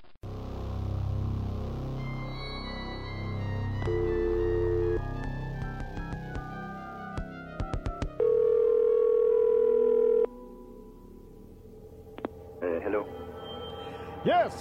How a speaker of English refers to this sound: If you'd just like to leave a message, wait for the beep.